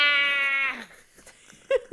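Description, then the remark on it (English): A cat, high on catnip, lets out a long, loud, drawn-out yowling meow that slides downward and fades, followed by a brief pause and then the start of another short meow. “Cat drunk.”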